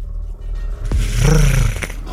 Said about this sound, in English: I hear the tiger. I like his growl.